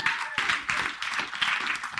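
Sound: audience applause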